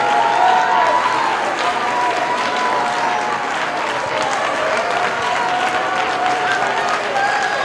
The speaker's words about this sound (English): Worship him. Clap your hands vigorously. Lift your voice. Worship God. He inhabits the praise of his people.